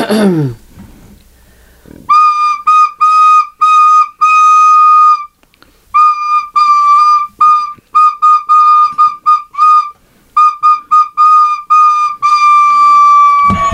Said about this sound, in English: I don't know how to play the recorder.